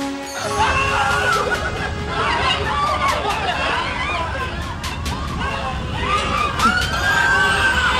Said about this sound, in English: That's the shopping experience you wanted? I wanted to, like, get fucking trampled. You hear the guy screaming? I want to be, like, standing on the motherfucker. Like, help!